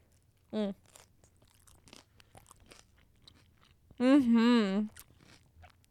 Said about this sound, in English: So that's what I got. I'm going to take a big old bite.